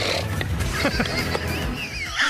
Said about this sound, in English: They had him on a tight live camera shot, and when they got done talking, they zoomed in on Tiger, and he just hawked up a big loogie, just spit.